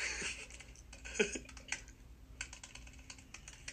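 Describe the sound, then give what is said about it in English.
Rapid, forceful, angry keyboard typing, with dense clusters of sharp key clacks in uneven bursts and brief pauses between flurries. “I'm angry typing, dude. That was loud.”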